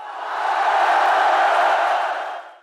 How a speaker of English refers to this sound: And the winner of all the autographs, said the announcer, is Tilly. The crowd went bananas. Everyone cheered.